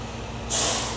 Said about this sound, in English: Sorry, this massive truck is just pulling up.